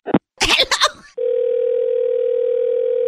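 telephone dial tone

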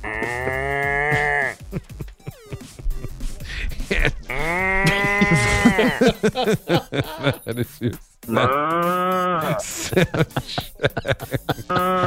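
cows mooing

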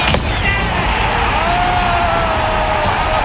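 stadium crowd cheering

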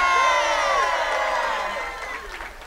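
audience cheering and clapping

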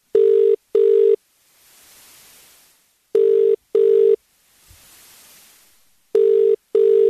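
phone call ringing out

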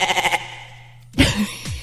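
goat bleating

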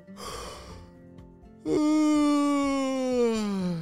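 exaggerated yawn

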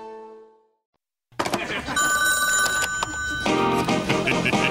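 telephone ringing

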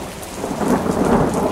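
thunderstorm with rain

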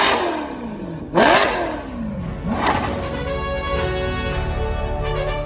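car engine revving

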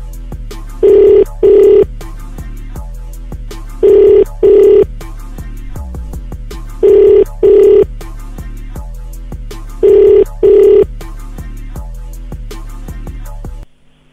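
phone call ringing tone

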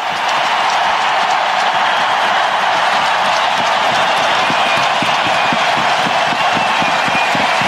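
arena crowd cheering

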